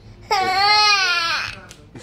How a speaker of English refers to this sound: Crying.